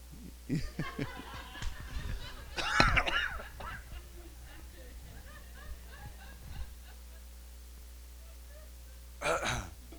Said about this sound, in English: He's clearing his throat. He's warming up his arm.